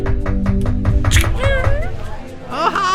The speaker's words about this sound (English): Hey, you guys don't have to knock. Oh, I'm sorry. Oh, dude, what? Did you even try the door? No, I didn't. I just knocked.